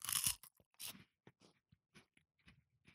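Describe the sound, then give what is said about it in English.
Loud, sharp crunching as fruit salad wafers are bitten, eaten for tea, two bright bursts at the start followed by a run of softer, irregular chewing crunches; no talking. “So this is our tea. Yeah. Fruit salad wafers.”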